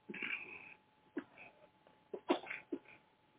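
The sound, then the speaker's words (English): A person coughs several times: a longer rough bout at first, then a few short, harsh bursts spaced irregularly, with no speech in between. “I got this cough, and they keep telling me to stop drinking cold juices and water, but I'm going to follow instructions.”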